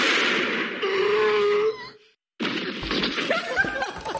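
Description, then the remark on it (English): A loud cinematic gunshot from a scene in the movie Animal House rings out over a strained, wavering cry, then a brief silence before a heavy thump and clattering crash as a horse falls to the ground. “and there's a gunshot, and the horse has a heart attack.”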